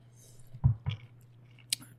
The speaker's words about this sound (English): Hold on. One more sip. Yeah, just because you're going to need it.